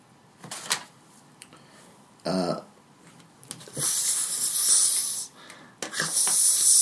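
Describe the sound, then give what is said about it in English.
During a tabletop fantasy role-playing game, a voice makes drawn-out hissing noises for a slithering creature, a long breathy hiss that swells and fades, then another rises at the end, with a brief voiced sound earlier. “… is just hissing.”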